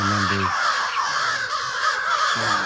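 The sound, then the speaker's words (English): Several crows caw loudly and harshly in quick overlapping bursts over turkeys fighting each other, a raucous racket that continues throughout with no pause and dominates the scene. “It's almost like the crows are trying to dive bomb them.”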